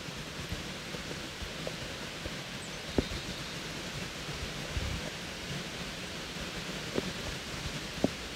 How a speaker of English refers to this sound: It was raining a tiny bit, but there are all of these yellow butterflies doing loop-de-loops in the air.